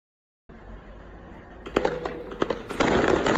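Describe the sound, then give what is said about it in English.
Fireworks crackle and pop in quick bursts over a steady rumbling background, with several sharp bangs building into a dense, continuous crackle toward the end, played back from a video of fireworks being shot at an excavator in China. “China bulldozer fireworks is what I looked up.”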